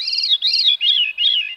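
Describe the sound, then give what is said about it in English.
A veery sings a short, breezy song of four swirling, flute-like phrases that step downward in pitch, clear, with no voices present. “intensity of Atlantic hurricanes, many songbirds like the veery could suffer the consequences.”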